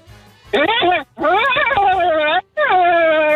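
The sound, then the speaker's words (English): A person's voice imitates the call of a reindeer named COVID in three loud, drawn-out bursts with brief gaps between, each one wavering and sliding down in pitch, a little like a horse's whinny. “Kind of horse-like.”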